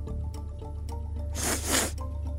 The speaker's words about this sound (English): Could I smell that again? Absolutely. Another big sniff.